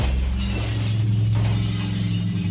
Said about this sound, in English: I race towards the bedroom window and charge through it, sending us both into the front lawn with a shower of broken glass.